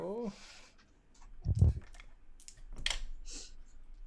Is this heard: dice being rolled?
yes